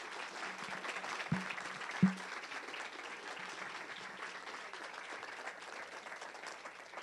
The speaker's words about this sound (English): Let's have a huge round of applause for our panel.